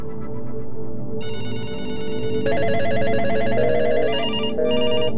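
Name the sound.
telephone ringing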